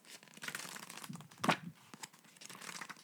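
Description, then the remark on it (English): Crisp rustling of the pages of a paper book being handled and turned, with irregular crinkles throughout and one sharper, louder flick midway. No one speaks. “We're actually using the paper book.”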